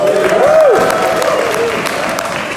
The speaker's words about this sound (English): Should we give them a big cheer? No.